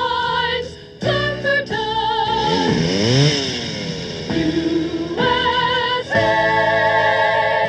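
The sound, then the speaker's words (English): A chainsaw runs loud on a sunny day in a wooded area, its buzzing engine revving up and down in pitch for several seconds, with no one talking over it. “It's a sunny, woodsy day in Lumberton, so get those chainsaws out.”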